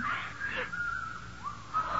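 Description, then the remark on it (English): An eerie, thin whistling drifts on a wavering high tone, sliding and holding across the two seconds. It is fairly faint, with no voices. “There's that whistling again.”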